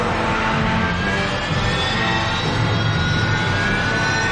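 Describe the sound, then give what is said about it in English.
A loud, steady jet-like roar as a big engine starts up, a thin high whine climbing slowly over the dense rumble the whole time, with no voices. “Starting main engine.”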